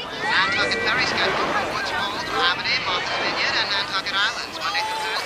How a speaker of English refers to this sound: The crowd is having a lovely day at the beach. There's a kid. There's people running into the water. You hear a radio announcer. It sounds like a transistor radio is playing on the beach.